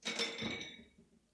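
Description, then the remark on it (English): A bottle of water clinks and clatters as it is knocked or handled, a bright, brief rattle fading within about a second, with no talking. “It's just a bottle of water, don't worry.”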